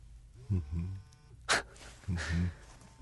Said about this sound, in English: So my cell phone, though it's on silent, starts buzzing and going off.